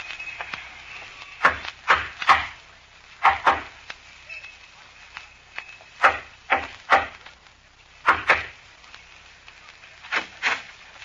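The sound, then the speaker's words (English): Knuckles rap on a wooden back door in a repeating coded knock, a group of three spaced knocks followed by two quicker ones, sharp against faint background hiss. “Remember the code knock? Yeah. 3 long and 2 short.”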